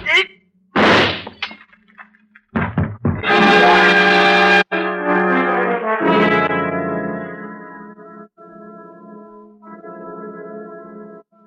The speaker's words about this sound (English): He stumbles and falls forward, a strange look on his face. The glass in his hand smashing into fragments on the tabletop by your side as you step back quickly.